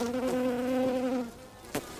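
A steady bee drone, twelve feet up, hums for over a second with a strong tonal buzz, then fades, followed by a brief faint click near the end. No one speaks.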